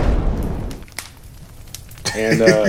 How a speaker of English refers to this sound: So with that being said, man, let me light the bonfire.